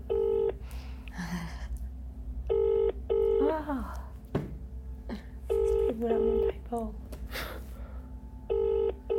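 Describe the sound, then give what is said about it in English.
A phone call to a man's number rings out over a speaker, repeating its steady double ring tone several times, while people murmur and talk quietly in between the rings. “I'm gonna charge back his number if you want. Yeah, I can call it”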